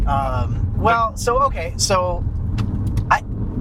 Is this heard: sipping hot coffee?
no